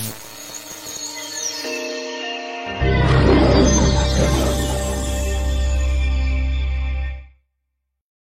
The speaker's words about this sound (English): Hey, did you like that? Did you hear the roar of the lion? That's what we're going to end our shows with, but just had that made today.